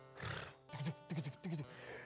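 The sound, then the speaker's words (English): A person vocally imitates a horse, evoking Paul Revere's ride through town during the Revolutionary War, with a whinny-like cry followed by three rhythmic, loud clip-clop bursts like galloping hooves. “You get on that horse, man, he'd go right through the town.”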